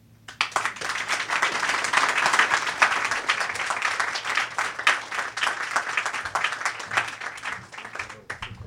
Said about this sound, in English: Give a one more round of applause for Alexis. We always love the debuters.